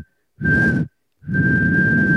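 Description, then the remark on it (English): Two breathy whistling bursts at one flat, unwavering pitch: a short one, a brief gap, then a longer blast that runs to the end. Loud and airy rather than melodic. “That's a terrible whistle.”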